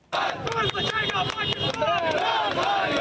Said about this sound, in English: Khan supporters burned tires and chanted as the former PM recovers from a gunshot wound to his leg.